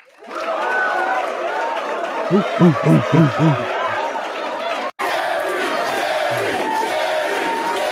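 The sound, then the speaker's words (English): A large crowd roars with sustained cheering and applause, with loud shouted whoops rising near the start. After a brief cut, the steady noisy cheering continues at full volume. “Get some applause going for us.”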